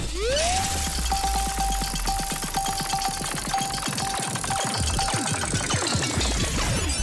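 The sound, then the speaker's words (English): A giant roulette wheel is spun to decide what someone will have for dinner, with a loud, rapid rattle of clicking ticks over a whine that rises and then holds steady. The ticks gradually slow, and the whine drops away at the end. “there's a roulette wheel, a giant roulette wheel”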